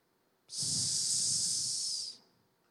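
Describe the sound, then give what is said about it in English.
A single sustained, loud hiss lasting about a second and a half, a voice imitating a snake, with a breathy rumble underneath before it cuts off. “There's the serpent. There's the snake.”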